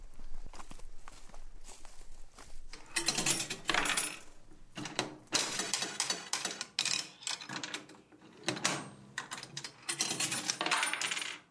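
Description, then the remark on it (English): An old penny slot machine in Headhunters, a barber shop and railway museum in Enniskillen, whirs and clunks through its mechanism, then coins clatter out in bursts of bright metallic jingling, paying out a penny and another go, with repeated ratcheting and clicking between payouts. “He's trying his luck on a machine that will be familiar to the passengers of the 1950s Express. I actually won. I won a penny and another go.”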